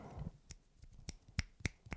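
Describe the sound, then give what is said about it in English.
Several sharp finger snaps, about five, ring out in a loose, uneven rhythm, crisp and bright, snapped as jazz-style applause in place of clapping after a haiku, following a brief low murmur at the start. “That's how you clap and jazz things.”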